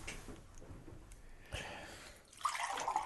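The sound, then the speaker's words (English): Water is poured from a heavy one-liter beer stein and sloshed around to rinse out a cup. A soft trickle swells into a brighter, louder splashing rush near the end, with no voices. “That, yeah, the water glass is a Stein. It's heavy, and it's hard to use to wash my wash my cup out.”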